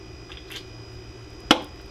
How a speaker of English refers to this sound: All right, audio audience, I am taking a sip here.